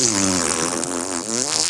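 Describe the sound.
A person imitates a fart with their voice: a loud, buzzy raspberry that holds steady for nearly two seconds, wavering slightly in pitch, with no other talking.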